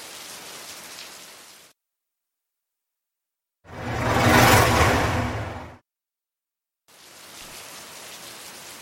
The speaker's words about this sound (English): Allegra's shower runs steaming hot.